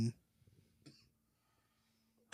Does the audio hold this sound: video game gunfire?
no